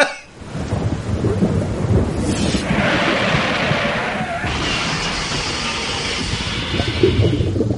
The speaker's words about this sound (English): And just to be cocky, why don't you throw another sound cocktail at me? Oh, I don't think I have the energy for thunderstorm, electrified, car crash, underwater. That's dumb. Here it is.